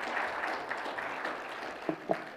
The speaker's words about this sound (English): Well, don't applaud him. His mother did all the work.